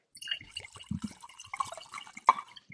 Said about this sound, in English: Scotchy, scotch, scotch. That's a big pour.